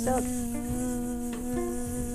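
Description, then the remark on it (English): A person hums a steady, nasal buzz with their voice, imitating a buzzing insect. The drone holds one unwavering pitch for about two seconds, with no talking. “Are we still doing the buzzing?”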